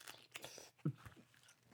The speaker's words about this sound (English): There was a slurp in there. I'm sorry. There's a lot of munching going on. This is my breakfast. Mm-hmm. A couple slices of pineapple.